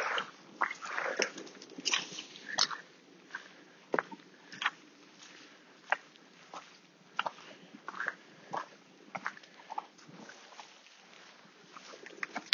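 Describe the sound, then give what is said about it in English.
A dog gulping and smacking, a series of quick, wet, irregular clicks and swallows spread across the whole stretch, fairly quiet with no voices. “Just heard a very slight sound of a dog gulping or a man maybe masturbating in a bush.”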